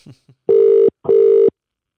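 A phone call to a guest ringing out at 8 o'clock: two steady, buzzing ringback tones of equal length, back to back with a short gap, loud and clear, after a couple of faint brief sounds at the start.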